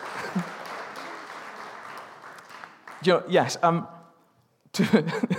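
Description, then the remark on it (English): An audience applauds to celebrate KV Kids, in a steady, dense patter for about three seconds, fading as voices take over, with a brief pause before more talking. “Seeing as we're applauding people, let's celebrate them.”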